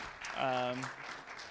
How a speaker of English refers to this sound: You can clap for the man who is going to preach.